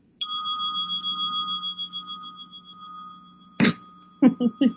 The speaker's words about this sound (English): I want you to ring the bell. Here we go. It's that mindful time, so we're going to do the chime. This is my favorite bell. Listen.